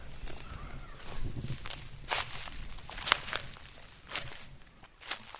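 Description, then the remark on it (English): Footsteps crunch through a field of green sugarcane in the Dominican Republic in an irregular walking rhythm, each step a sharp, bright crackle of rustling leaves, moderately loud with no talking. “Expect a bit of crunching as I move through.”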